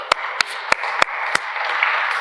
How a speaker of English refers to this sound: Let's give an applause to Jesus.